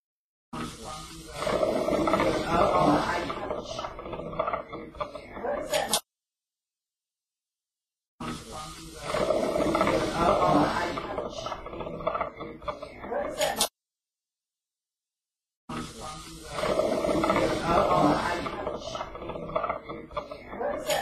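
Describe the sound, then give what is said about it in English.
A low, rough growl, an EVP captured in a house during a paranormal investigation, plays three times in a row, each take lasting about five seconds with a raspy, rumbling texture, separated by short stretches of silence. “Okay, so there was the sound clip, clearly a growl, and they heard it in the moment is the thing that makes this one kind of unique.”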